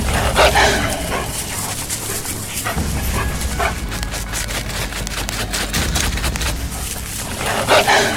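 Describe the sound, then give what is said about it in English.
Wolves bark and yip outside, smelling blood, a cluster of sharp, excited calls and whimpers repeating throughout, with a steady low rumble underneath. “Sounds like wolves. They smell blood.”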